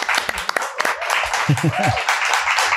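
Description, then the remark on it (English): A live studio audience at Tattered Cover in McGregor Square, Denver, Colorado, at a taping of the USA Volleyball Show claps and cheers steadily for about three seconds, a dense crackle of many hands with whoops and voices rising through the middle, loud throughout. “This is the first time ever we've had a live studio audience, so give a big round of applause for yourselves.”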